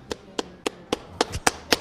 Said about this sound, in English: I do a decent clap, but a clap is not like a little girl scream. Yeah, you got to open the hands a little more.